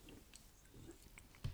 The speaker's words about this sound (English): Sorry if you can hear me swallowing. It's annoying. I know I get annoyed when I can hear that shit on other people's podcasts.